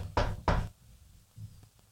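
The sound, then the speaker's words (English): Two loud, sharp knocks on wood in quick succession, followed by a faint, softer thud and then quiet. “Knock on wood.”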